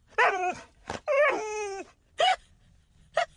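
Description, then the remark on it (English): A dog makes a short series of whiny vocal sounds: two longer drawn-out whimpering groans followed by a couple of brief yips, with no one talking. “That was a bit naughty to say, Pebbles, but we'll let you get away with it because hopefully there's not many other dogs listening”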